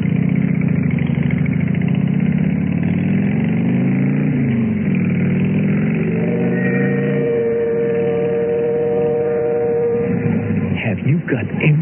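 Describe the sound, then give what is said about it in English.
A motorcycle carrying a rider and a passenger drones loudly and steadily while riding, its pitch rising and falling, then winds down near the end as the bike pulls up in front of the Lace house. No one speaks. “How I felt when I pulled up in front of the Lace house, helped her off the bike, and led her up to the front door”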